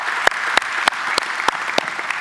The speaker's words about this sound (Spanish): Y por eso en esta tarde queremos reconocer a aquellos que han servido en alguna de las ramas de las Fuerzas Armadas y lo queremos hacer con un fuerte aplauso. Gracias por su servicio, gracias por su trabajo.